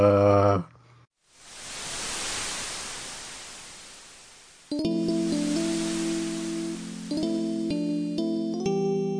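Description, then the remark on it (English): A single crashing ocean wave sound effect: a hissing roar swells up quickly and slowly recedes over a few seconds, then gives way to steady electronic musical tones. “Let's play those great wave crashing sound effects now.”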